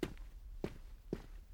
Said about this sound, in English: And suddenly she wakes up and she hears footsteps outside on the sidewalk outside their little farmhouse.